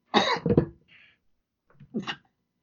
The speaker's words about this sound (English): I try to mute my mic whenever I cough.